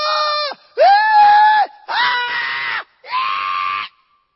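Four loud, drawn-out human screams follow one another in quick succession, each a strained, high-pitched wail lasting under a second, piercing with no talking in between.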